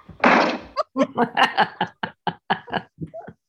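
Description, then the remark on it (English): A loud door slam bursts out at the start, followed by a quick series of short, rhythmic bursts that sound like chuckling laughter. “And that was another door slam.”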